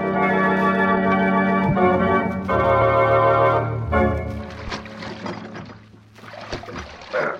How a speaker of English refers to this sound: Just keep rowing and let me manage this.